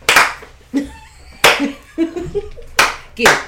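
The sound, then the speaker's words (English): Four loud, sharp hand claps land at uneven intervals, with a voice talking or chanting in the gaps between them. “Ooh, we're going to clap back.”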